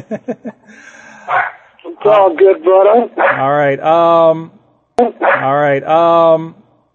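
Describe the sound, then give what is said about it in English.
Dogs bark and yelp in a run of close, loud bursts with a brief pause between two barrages, preceded by a few quick soft taps. “Oh, well, the dogs are going.”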